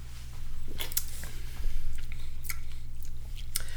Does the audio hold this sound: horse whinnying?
no